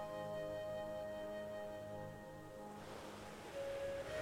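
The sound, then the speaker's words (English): Soft surf washes in steadily on a beach that stretches for miles along the water's edge, under a sustained, humming musical drone, with a broader rush of breaking waves swelling toward the end. No one speaks. “Relaxing Zen Beach”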